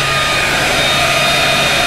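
A powerful fan pumping cool air into the radiators of cars to cool their batteries and motors roars steadily, blowing air in a loud, unbroken rush with a low hum and a thin, constant high whine running through it. No one speaks.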